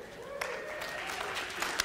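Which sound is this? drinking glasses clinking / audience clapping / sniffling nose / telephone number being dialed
audience clapping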